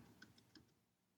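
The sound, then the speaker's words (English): A handful of soft, sparse clicks of someone typing on a keyboard, spaced unevenly over about a second against a quiet, low background hum. “I can hear you typing.”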